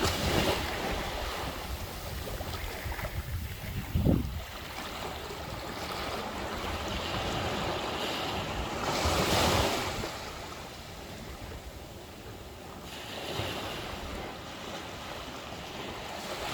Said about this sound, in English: Waves, like those you can hear in the background lapping at the shores of a sea ranch beach, are a constant along the coast.